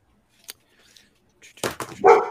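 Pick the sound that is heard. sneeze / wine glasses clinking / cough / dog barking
dog barking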